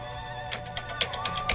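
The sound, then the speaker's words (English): A phone ringtone plays on its own: sustained electronic tones with bright, chiming accents repeating in a steady rhythm roughly every quarter second, at a moderate level. “Fam, turn your volume down on your phone.”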